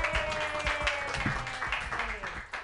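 A comedy show crowd claps steadily and enthusiastically for a comedian for a few seconds, a dense patter of many hands, with some cheering voices mixed in.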